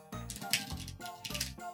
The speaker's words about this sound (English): Here's that good shuffle.